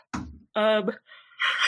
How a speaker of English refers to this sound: yawn. Yeah, sorry. I'm very tired.